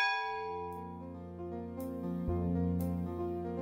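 The Lutine bell at Lloyd's, a large, deep bell, tolls loudly and slowly, each strike ringing out over the long, humming resonance of the previous ones, with no voices present.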